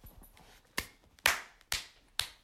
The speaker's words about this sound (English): Clapping myself there.